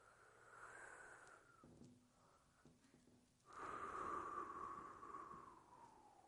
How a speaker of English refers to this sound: When the ball starts to make its way down, I want you to take a big, deep breath. Ready? Deep breath. Exhale. We're going to do this one more time. Ready? Got to inhale.